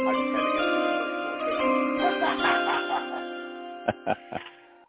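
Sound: chime sound effect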